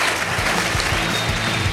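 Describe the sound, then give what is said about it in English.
A crowd claps steadily in a dense, continuous wash of applause for Lew Rockwell, loud, with no voices standing out above it. “So let's have a big round of applause for Mr.”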